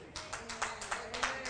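An audience claps together in a steady, quick rhythm, about eight sharp claps in a second and a half, with a faint constant hum underneath and no one talking.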